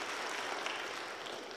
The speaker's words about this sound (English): So I know you want to pledge your love and support to the Allens by letting it be known by saying amen, amen, and applause.